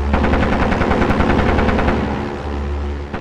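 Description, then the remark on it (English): Rapid machine-gun fire from a diving biplane, a loud, continuous rattle of sharp bursts over a steady low engine drone, with no voices. “It's shooting hard shells at me.”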